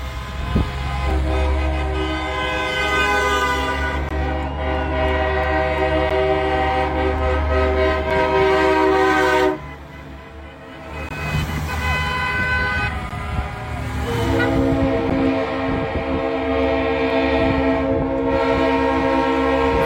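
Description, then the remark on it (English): Loud, sustained air horns blare almost nonstop from trucks driving by, their deep chords overlapping over a low engine rumble that shakes the ground, with a brief drop in volume midway before the honking surges back. “But being here and seeing this and feeling the ground shake when these trucks drive by is giving me shivers.”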